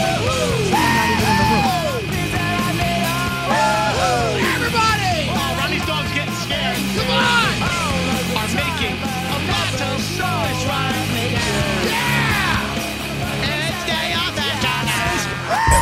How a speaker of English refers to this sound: everybody, I want to hear you scream. Come on.